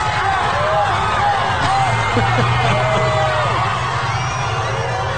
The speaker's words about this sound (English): You guys were watching this. Cheering him on.